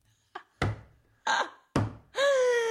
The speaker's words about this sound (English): That was my beach table that I was banging. Anyway. Sounds very flimsy.